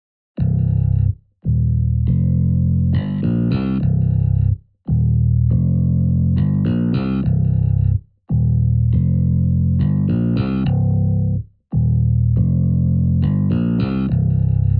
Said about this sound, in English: This gives the bass line a little bit more of a static sound, but the samples that I've chosen are over-the-top slap bass or funk samples. Let's give them a listen in the ever-so-groovy bass line.